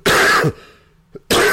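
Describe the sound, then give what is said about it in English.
Two loud, harsh coughs, separated by nearly a second of quiet with a small throat-clearing catch just before the second cough. “excuse me. I don't have a cough button.”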